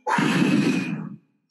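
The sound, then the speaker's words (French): A person blows out one long, loud, breathy gust, imitating the wolf's big blow from the book The Three Little Pigs, lasting about a second before cutting off into silence. “Évidemment, toi et l'enfant, on souffle ensemble, c'est un gros souffle de loup.”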